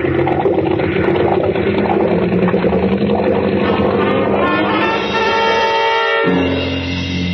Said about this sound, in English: All the salt water that should be flowing through the water jackets of two big exhaust pipes pouring into the bilges. And two red-hot manifolds absorbing all the heat of the two big engines.